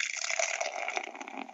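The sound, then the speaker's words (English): Beer pours steadily from a can into a glass, a continuous gushing and fizzing splash that holds at an even level for a moment with no voices. “So the pour.”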